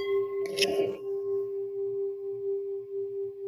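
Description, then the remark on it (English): A single sacred solfeggio chime tuned to 396 is struck, a bright metallic hit that settles into a steady, pure mid-pitched tone with faint overtones, ringing on evenly and alone for several seconds. “That's a chime. That's one of the sacred solfeggio chimes. 396.”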